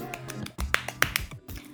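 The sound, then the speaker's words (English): A handful of sharp, bright hand claps in an uneven rhythm, a few landing louder than the rest, over a low steady background hum. “Insert clap noises.”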